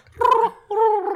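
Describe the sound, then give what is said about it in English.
A voice imitates pigeon cooing with two low, throaty, warbling coos, the first rougher and gurgling, the second smoother and sustained, with a short pause between them. “That's pigeons, that's not peacocks.”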